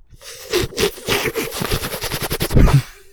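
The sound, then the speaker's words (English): A long, noisy slurp of coffee, made of rapid rattling bursts of airy sound that run for nearly three seconds, ending in a louder, heavier gulp before fading out. “Coffee slurping ASMR.”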